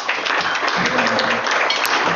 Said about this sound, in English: I think that deserves some applause.